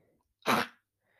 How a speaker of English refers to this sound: She's fine. She was just coughing. She's A-okay.